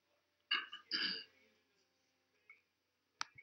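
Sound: coughing or throat clearing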